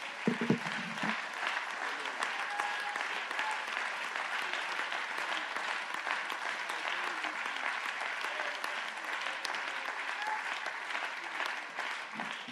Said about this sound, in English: Let's give Jesus a great big hand clap of praise.